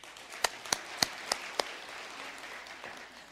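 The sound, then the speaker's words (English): A handful of sharp, separate claps from an audience asked to clap if they had ever been spanked, about five in quick succession at a steady pace, then fading into a soft murmur of crowd noise with no speech. “But if you're willing to share this information with me this morning, a clap if you've ever been spanked.”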